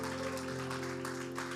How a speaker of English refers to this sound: Dele fuerte aplauso. Give him a great applause.